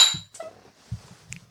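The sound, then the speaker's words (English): Glasses of a 14% alcohol, eggy, eggnog-like drink clink together in a toast, a few bright ringing taps with some soft handling noise between them, and no voices. “Let's raise our glass.”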